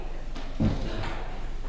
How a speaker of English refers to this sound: will you do me a quick favor and pull that door? You can pull that straight out.